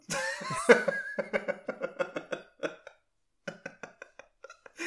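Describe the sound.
A person imitates an aggressive coughing fit: a rapid run of harsh coughs, a brief pause, then another string of shorter, choppier hacks.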